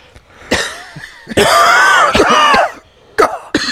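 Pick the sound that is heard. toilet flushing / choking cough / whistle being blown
choking cough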